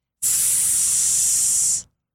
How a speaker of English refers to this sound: They sprayed water into the basin.